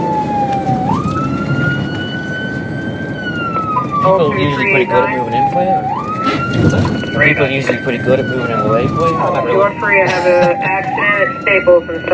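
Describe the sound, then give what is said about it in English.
A police car siren wails steadily in long rising and falling sweeps, loud, switched on by an officer while driving to a violent disorderly-subject call, heard from the moving car with a person talking over it and road noise beneath. “Officer Miller switches on the siren while we make our way to the scene”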